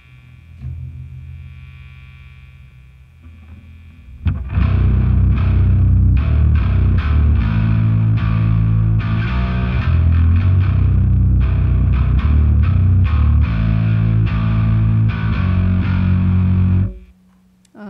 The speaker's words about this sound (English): So I can really control, you know, how quiet or noisy the pedal is. And then I believe, you know, for more of just a classic distortion, I'll tweak it.